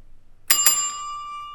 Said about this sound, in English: As he goes to just ring the bell.